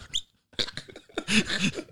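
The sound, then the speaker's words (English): A short, high-pitched squeak, like a burp squeezed out mid-laugh, followed by bursts of breathy, giggling laughter that swell and stay loud to the end. “Burping as I was laughing. So it was just a squeak.”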